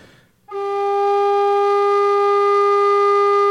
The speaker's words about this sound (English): So let me play it normally. Just blow gentle, kind of like steady.